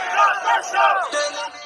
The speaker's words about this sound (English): Meanwhile, festival goers in the South Quadrant wave their arms and chant in unison for an end to the concert.